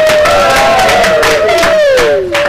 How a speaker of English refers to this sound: That was the hand sign that the guy did behind UKIP, or were you cheering there?